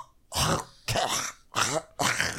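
Four harsh, close coughs in a steady series, each a short rasping burst with a throaty, voiced edge, separated by brief pauses. No talking accompanies them.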